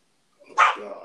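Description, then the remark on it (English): A pet dog lets out a single sharp bark, loud and sudden, trailing into a brief rough yelp as the sound fades off. “Holy crap, he scared me. My dog.”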